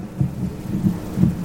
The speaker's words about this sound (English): Ah, Moses, as the sound of that rod striking the rock echoes and re-echoes round the place, do you not know that your dreams of entering the promised land are shattered?